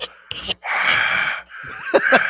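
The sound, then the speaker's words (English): A voice imitates heavy, breathy panting, with several loud, airy gasping inhales and exhales close to the mic, in an uneven rhythm as if breathing down a phone line. “And just like breathing.”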